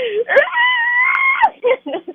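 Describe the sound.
A person does an imitation horror-movie scream: one loud, sustained shriek lasting about a second, followed by a few short voiced bursts that sound like laughter or talk.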